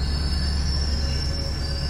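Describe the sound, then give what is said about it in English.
A train rolls steadily along the rails, its wheels giving off a continuous high, thin squeal over a deep, constant rumble. It sounds fairly loud, with no voices. “Yeah, they parked a train there.”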